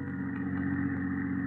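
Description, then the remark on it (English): A steady car engine drones at a constant low pitch as the car cruises along a road at an even speed of about 25, with a continuous rumble and no talking. “We've been going 25 all the way. Can't you go any faster?”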